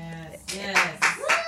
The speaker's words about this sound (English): Thanks for clapping. There isn't another kind of response.